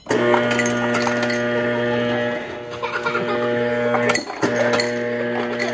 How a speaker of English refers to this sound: That is a loud ice machine in a refrigerator.